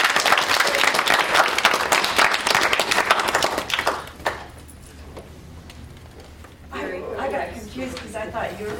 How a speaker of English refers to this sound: All right. Clap.